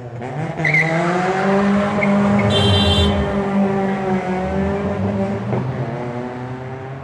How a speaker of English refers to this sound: Equally, the traffic on Pierce Road knows that if you want to show off, this is the place to do it. As you pass the line of cars in Bebop's car park, this is where you rev or wheel spin.